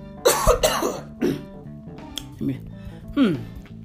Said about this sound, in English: Nothing, you know? Nothing came out. You know, like that was, you know, the most anticlimactic cough I've ever had. That was very disappointing.